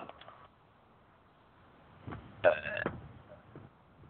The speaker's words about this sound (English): Now, the second belch, well, frankly, I'm going to give the second belch to those to the Detroit Tiger organization for letting go of three good pitchers.